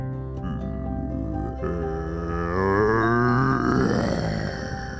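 A deep, rumbling monster growl pouring out from the ground on a beach as the ground shakes and a sandcastle monster rises from the sand. It swells and bends upward in pitch midway, then slowly sinks again, holding loud and unbroken for about five seconds with no voices.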